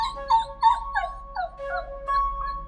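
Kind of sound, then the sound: animal, dog whimpering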